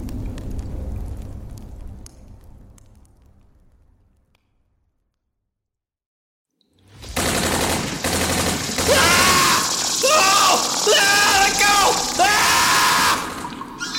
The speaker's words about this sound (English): Wesley jolted awake, Salvatore's screams bouncing off the cavern walls